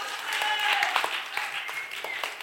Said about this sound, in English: Thank you. Whoa, don't applaud that. That's bad.